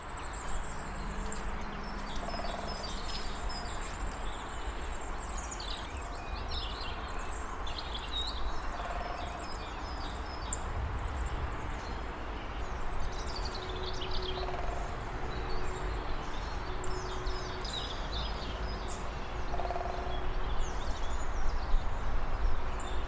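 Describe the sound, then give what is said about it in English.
A woodpecker drums on wood in local woods in short rolls, repeating about four times at steady intervals, while birds, including robins, sing and chirp steadily across a quiet woodland background. “I've been faking woodpeckers in the local woods.”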